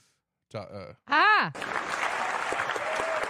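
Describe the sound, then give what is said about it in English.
A canned applause sound effect played from a sound-effect button: a couple of loud, tonal whooping cheers, then a dense, steady wash of clapping that fills the rest of the short clip. “Applause button.”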